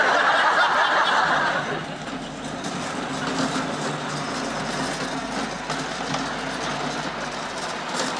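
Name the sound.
lawn mower running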